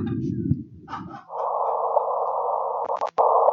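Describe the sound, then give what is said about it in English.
Gravitational waves converted into sound: a low rumble gives way to a steady, buzzing mid-pitched drone over a faint low hum, which briefly stutters and cuts out before resuming. “I'm sorry, but this is what gravity sounds like.”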